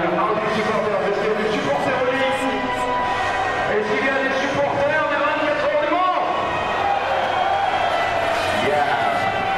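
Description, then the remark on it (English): A large crowd at a motor race circuit roars and cheers steadily when asked to cheer for Le Mans, a dense wall of many voices with engine drone mixed in, sustained at full loudness throughout with no pauses. “And someone says, but if you're here supporting Le Mans, give us a cheer. Everybody cheered.”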